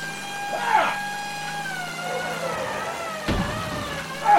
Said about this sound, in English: Okay, I'm going to have to lean out the window. Okay, I'm going to honk the horn.